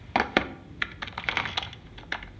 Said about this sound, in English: Why are you typing on a laptop whilst walking?